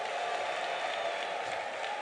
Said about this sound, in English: Give the Lord a clap offering here.